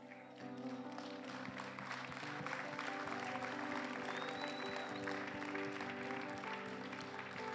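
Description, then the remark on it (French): An audience claps in a steady, dense wash of applause that lasts several seconds, with sustained low musical tones humming underneath. The clapping comes during an English-French sermon about God pruning for more fruit. “Are you sure you're clapping for the pruning?”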